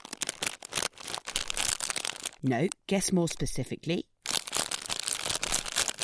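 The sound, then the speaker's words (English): A bag of ready salted Pom-Bears crisps rustles and crinkles loudly in dense, continuous bursts, pausing while a person speaks briefly in the middle, then crackling again until the end. “Guess what food I'm rustling here?”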